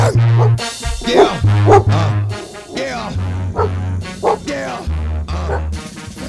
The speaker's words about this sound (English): That was them dogs barking.